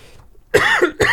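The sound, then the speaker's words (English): Two loud coughs in quick succession, the first harsh and drawn out, the second sharp and cut short at the end, with a brief quiet moment before them. “Excuse me. Mute my coughing.”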